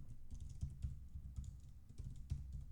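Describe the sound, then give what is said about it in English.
Steady, rapid typing on a computer keyboard, a run of soft overlapping key clicks with occasional slightly harder taps, over a low background hum and no voices. “Can you hear me typing?”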